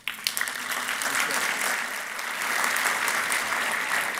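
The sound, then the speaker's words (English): Sustained applause from an audience, a dense steady patter of many hands clapping at even loudness for several seconds, with no voices standing out. “Round of applause”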